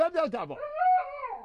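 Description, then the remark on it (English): A quick burst of a person speaking gibberish to a dog gives way to the dog's drawn-out, wavering whine that rises and slowly trails off. “He knew right away. He called you out.”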